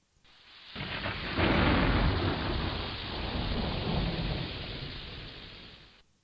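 A thunderstorm with a long, deep roll of thunder rumbling over steady, hissing rainfall, swelling loud early and fading gradually toward the end.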